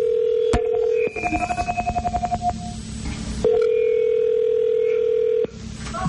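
A steady telephone dial tone hums, then a quick run of rhythmic keypad beeps as a number is dialed to call someone, followed by another sustained tone, all loud with no talking.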